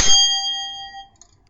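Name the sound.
bell being rung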